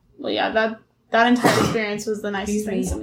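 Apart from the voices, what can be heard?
sneeze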